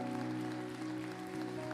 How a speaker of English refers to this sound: Come on, can we give Jesus a hand clap of praise?